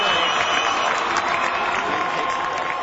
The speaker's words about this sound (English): They brought him out. Why are you cheering? He failed.